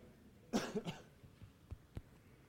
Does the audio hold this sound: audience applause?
no